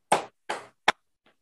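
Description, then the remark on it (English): Three sharp, loud hand claps in a slow, evenly spaced rhythm, made by a guard after a speech nobody else applauded, the first two ringing briefly, followed by a much fainter fourth clap. No one speaks. “And then at the end of it, nobody clapped.”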